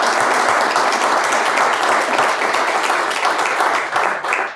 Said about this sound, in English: First, let's give a round of applause. Sure, applause.